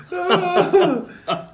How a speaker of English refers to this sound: Making me cough. I'm laughing so hard.